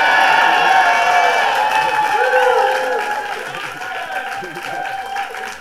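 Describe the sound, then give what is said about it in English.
A crowd applauds and cheers steadily, a dense wash of clapping and voices with a few rising whoops standing out partway through, loud throughout and easing only slightly toward the end. “Extra pause for applause.”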